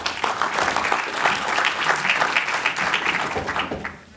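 An audience at a VoD Commissioner's session applauds as a speaker from Hopster is introduced, a dense steady patter of many hands clapping at a moderately loud level for about four seconds before tapering off at the end.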